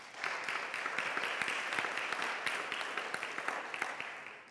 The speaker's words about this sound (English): Can we give the Lord hand clap praise? Amen.